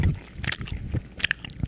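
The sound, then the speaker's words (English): Wet chewing with repeated crunchy bites and soft smacking sounds, coming in an irregular rhythm of a few distinct bursts. No one speaks. “All I can hear gross. Is just chewing and like.”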